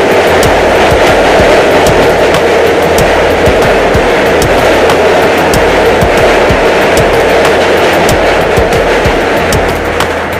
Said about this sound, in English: Hold on. Let me let the train pass.